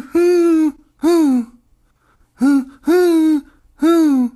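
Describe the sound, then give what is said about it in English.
A person imitates a wood pigeon's cooing call, giving five loud, breathy hoots: two, a short pause, then three more in a steady rhythm, with no other talking. “I don't like the wood pigeon, that noise it makes.”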